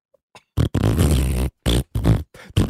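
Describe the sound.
A voice blows loud, buzzy mouth-made fart noises: one long sputtering raspberry followed by several shorter bursts in a halting, almost tune-like rhythm.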